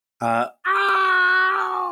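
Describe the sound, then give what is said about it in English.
The Spy's death scream from the video game Team Fortress 2, made to sound French: a short guttural cry, a brief pause, then a long, sustained wailing yell that holds steady and sags slightly in pitch, loud and unaccompanied. “I love how they tried to make a French death scream.”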